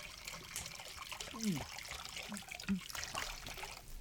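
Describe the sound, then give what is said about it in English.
Salt water from a becalmed sea pours in a steady, hissing trickle as the base of a cure potion, with a couple of low gurgles partway through, fairly quiet, with no voices. “We need salt water of a becalmed sea as the base.”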